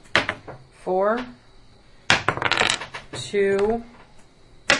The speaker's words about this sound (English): 3d6 fire damage. Is that this? Yep. Mm-hmm. And so I roll three times.